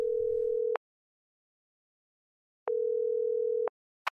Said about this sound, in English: In a frantic bid to keep his shell and his sanity intact, Humpty Dumpty pulled his cell phone out of his pocket and dialed, a combination of dread, fear, and hope swirling around his brain.